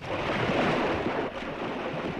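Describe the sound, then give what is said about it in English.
Steady rushing of the sea waves at Dublin, a broad hissing wash that swells and briefly dips before continuing at an even, fairly loud level, with no voices. “The sea sound of the sea-girthed, seaweed-girthed, deep down, down-swelling, fine-shelling sea of Dublin and Dublin's own.”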